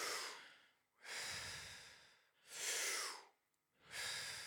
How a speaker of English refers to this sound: Yep, keep going. Deep breaths in. I'll instruct you through it. So, yep, keep going.